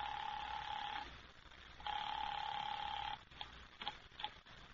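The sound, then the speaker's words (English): A telephone call is placed to headquarters: the line rings twice with long, steady buzzing tones separated by a pause, followed by a few short clicks and blips like a call connecting. No one speaks. “What are you doing now? Calling that number.”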